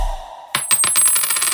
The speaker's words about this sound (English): Drop that coin.